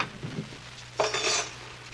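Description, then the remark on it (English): Silverware clatters as it is put away: a brief, bright jangle of metal utensils knocking together for about half a second, after a quiet start with low background hum. “Now, let's put all the silverware away.”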